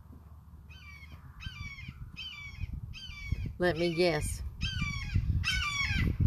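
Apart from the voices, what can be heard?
red-shouldered hawk call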